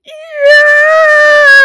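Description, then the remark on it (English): A woman lets out one long, high-pitched scream that starts softer, then swells loud and holds a steady, piercing pitch for over a second, with no other voices. “After a few seconds, Nova stopped screaming, but she was breathing heavily.”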